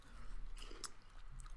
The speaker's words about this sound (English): Sorry to interrupt. I'm really awkward right now because I don't want to get the crunching on.